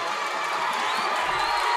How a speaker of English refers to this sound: Now DiBiase in there. Crowd cheering him.